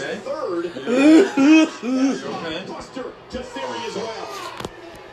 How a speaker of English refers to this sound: I'm still coughing.